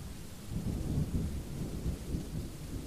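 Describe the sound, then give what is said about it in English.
Steady rain falls heavily with a low, rumbling wash, like a storm with thunder, continuous with no voices. “So relax, close your eyes, and enjoy the rain while I read to you our Valentine's story.”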